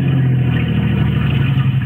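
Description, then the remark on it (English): A car engine hums steadily and fairly loud, a low droning motor sound that holds constant with a slight rev, as a car comes around a curve ahead. “Another car coming around the curve ahead of us.”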